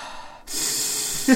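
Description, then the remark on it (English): A deep, forceful inhale through the left nostril while holding the nose up: a steady hissing rush of air lasting about a second, ending with a brief throaty voiced sound. “I'm just going to do the ending while holding my nose up, just so I can get that good left nostril breathing going on. Fill them lungs.”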